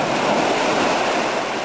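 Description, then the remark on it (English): A steady, loud wash of huge water waves surging and sloshing inside Devil's Hole, a deep water-filled fissure, caused by earthquakes thousands of miles away, with a dense hiss and no clear breaks and no voices. “And get this, earthquakes rumbling thousands of miles away have caused huge waves to slosh around inside it.”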